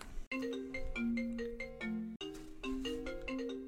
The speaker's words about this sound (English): So that's the problem with a Mac, is that if it's linked with your phone, when your phone rings, your goddamn computer rings too. And you can't turn that shit off.